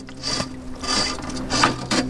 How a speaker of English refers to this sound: He pushes a metal pole deep into the river bottom to collect a sample.